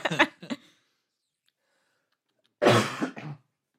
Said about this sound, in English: I guess I'm also coughing, so the other one isn't.